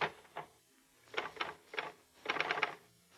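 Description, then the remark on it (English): Muffled keystrokes from a portable typewriter with a sheet of paper inserted, resting in a lap to deaden the noise and vibration, come in irregular little clusters, a quick burst near the end, fairly quiet, with no voices. “You insert a sheet of paper into the portable. Put it in your lap to deaden the noise and vibration.”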